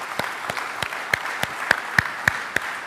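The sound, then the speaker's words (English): An audience applauds together in a church. Sharp, evenly spaced claps stand out above a steady wash of clapping, about three beats per second, with no voices. “Now, we can clap for this.”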